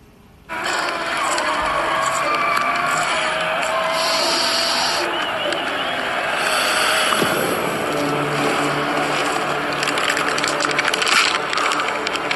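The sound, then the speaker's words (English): Next-gen race cars, on track for the first time at Virtual Darlington, roar around the track in a dense, continuous wall of engine noise. The sound is loud, with a steady drone that swells and shifts as cars pass. “Now, next-gen cars on track for the first time at Virtual Darlington.”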